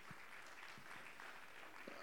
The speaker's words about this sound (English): Anybody glad you're in church? Oh, give the Lord a good hand clap today.